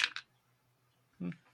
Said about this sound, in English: And yours is a D8? That's correct. All right. Let's see what this rolls.